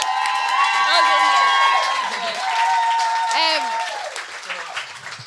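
A live audience applauds loudly and steadily, a dense wash of clapping with scattered whoops and cheers rising above it, easing off slightly toward the end.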